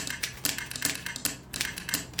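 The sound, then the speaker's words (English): Brisk mechanical typewriter clatter from one man typing stories on two typewriters at once, with sharp key strikes landing in a steady, slightly overlapping rhythm, no voices. “It was also unusual when 20 minutes later, I noticed he opened up the other wire and was using both typewriters.”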